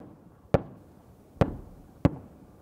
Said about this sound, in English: Oh, something's burning, he says. His unit also managing to take out a Russian main battle tank by dropping several bombs on it.